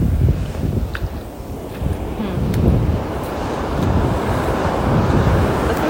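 Ocean waves wash onto a beach in a steady, low rumbling roar, heavily mixed with wind buffeting the microphone. No one speaks.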